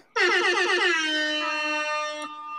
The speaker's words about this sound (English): Sorry, your air horn was too low.